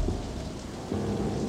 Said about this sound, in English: The howling wind and rain rattles the windows. At first, he thinks it's just the endless thunder that has disturbed his sleep.